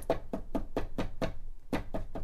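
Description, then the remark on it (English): Firm knocking on a door, about eight evenly spaced raps with a short pause before the final two, fairly loud, with no voices. “He's knocking at our heart's door.”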